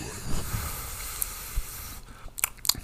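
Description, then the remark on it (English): Chewing of spiced, earthy-tasting food, with wet, crunchy mouth noises and a few sharp bites near the end. No one speaks. “Yep, tasty. Still tastes very earthy.”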